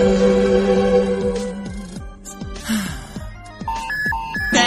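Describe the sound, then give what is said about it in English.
Electronic phone alerts chirp in quick succession, stepped high beeps piling up toward the end after a stretch of sustained tones and falling swoops; fairly loud, with no talking. “Blow up your phone with alerts every time they hear someone sneeze.”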